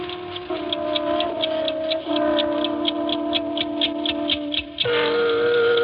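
An eight-day mechanical clock ticks steadily and evenly in an apartment living room, clear, several ticks per second over a sustained tonal hum that shifts pitch a few times.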